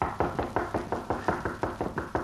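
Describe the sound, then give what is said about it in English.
A steady series of about ten firm knocks on the rear wooden door of the Cutler home, evenly spaced, with no voices. “A short time later, Gimp knocked at the door of the Cutler home.”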